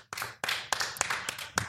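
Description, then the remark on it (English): An audience, asked to applaud if aged 18 to 30 without a driver's license, applauds in a steady wash of clapping, with a handful of sharper, louder claps standing out at irregular moments. Nobody speaks over it. “Applause, please, audience, if you are between the ages of 18 and 30 and don't have a driver's license.”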